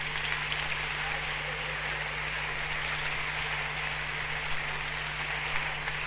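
A crowd claps for Jesus steadily for several seconds, a dense, continuous wash of many hands with no voices on top.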